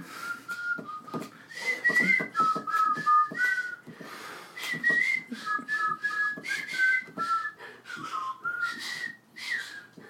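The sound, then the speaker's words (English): A bright, bouncy tune from the opening of the Disney film Robin Hood is whistled alone for about ten seconds, the melody hopping between short, clear high notes in a lilting rhythm with brief breaths between phrases. “I love the opening. I know people that have never watched the entire movie, but they know that song in the opening, and they're like, what is that from?”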